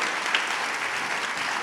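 An audience at a morning event applauds steadily for a woman thanked for her community work, a dense wash of many hands clapping at an even, moderately loud level with no voices rising above it.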